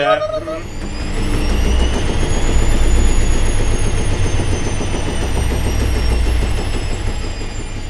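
A tumble dryer runs with a steady, heavy low rumble and a thin high whine that rises slightly, droning on without a break; a brief voice sounds at the very start.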